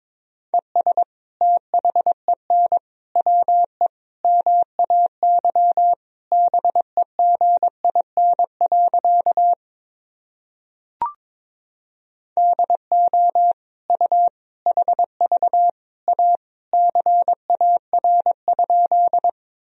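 Morse code practice sentences made of common words and abbreviations, sent at 22 words per minute: a single steady mid-pitched tone keyed into quick dots and dashes, broken by a short pause with a faint click midway. No voices.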